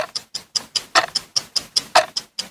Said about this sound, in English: That is a game where I give you a category and you have 5 seconds to name that number of things from the category. …, do you have our beloved timer? Yeah. That's what it sounds like.